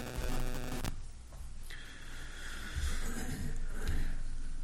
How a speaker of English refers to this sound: There's some interference here.